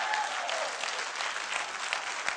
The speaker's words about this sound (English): Come on and clap.